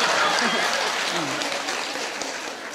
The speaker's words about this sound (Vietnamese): À, nói hồi nãy không nghe sao bây giờ mới vô tay.